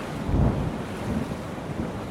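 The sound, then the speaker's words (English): A steady, dense roar of wind and crashing ocean surf, rumbling low and loud throughout with a heavier surge near the start and no voices, from a fierce storm at sea just outside the harbor of Hampton. “Except the vessel barely made it out of the harbor before it met a fierce storm.”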